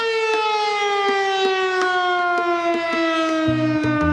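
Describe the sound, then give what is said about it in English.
A civil defense siren in the small town of Minden, Nevada, where it sounds every day and has for decades, wails in one loud, sustained tone whose pitch sinks slowly, with faint regular ticks running beneath it and no voices. “we head to a small town in Nevada where people hear a siren every single day.”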